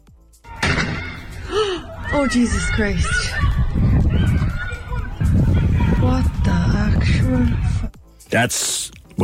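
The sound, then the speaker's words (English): A single sharp gunshot cracks out in a residential street, Ravensdale Close in Mahon, in the evening, near the end of a stretch of agitated shouting and commotion on the green outside, loud against the crowd noise. “That is a grab of what purports to have been a gunshot in Ravensdale Close in Mahon yesterday evening.”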